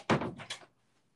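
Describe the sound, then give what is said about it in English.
A door in a house is opened and shut, giving two quick clunks about half a second apart before everything falls quiet. “Okay, so when I knock, you open?”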